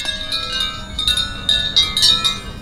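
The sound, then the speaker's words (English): Metallic chimes of an outdoor art installation, an anti-monument whose chimes create the negative space of an arch, ring in a shimmering, overlapping wash, with bright strikes sounding every half second or so over a steady ringing drone, and no talking. “The inverse of the gateway arch on the other side, we can see like the chimes create that negative space of the arch.”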